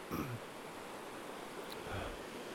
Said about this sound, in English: Still feel really grateful to be here. Just enjoying the sound of this river. Water's got to be so cold.